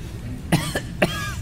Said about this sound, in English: I have the cough. I won't be able to make it to church today because I may have the COVID.